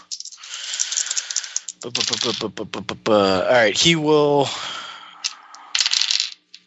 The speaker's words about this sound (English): I'm rolling some dice for NPCs, and PC is also an NPC.